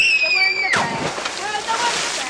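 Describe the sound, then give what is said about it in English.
A high, drawn-out child's squeal gives way to steady splashing and sloshing of water as kids swim in the Severn River in summer, half an hour outside Washington, D.C., with faint children's voices mixed into the busy watery noise. “A half hour outside of Washington, D.C., a summer scene plays out on the Severn River.”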